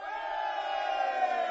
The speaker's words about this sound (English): The men cheer.